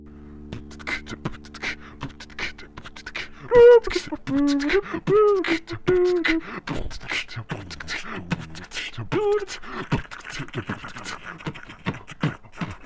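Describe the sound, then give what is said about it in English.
Beatboxing: a dense, fast stream of mouth-made clicks, pops and hissing snares, with a few short hummed, wavering tones mixed in, continuing steadily and fairly loud throughout. “Would you like to hear some beatboxing? Yes, and I can join in.”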